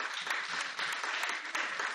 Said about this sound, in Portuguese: hoje nós vamos agradecer cada um desses ministérios, todos os ministérios que temos aqui na igreja. Vamos aplaudir cada um deles.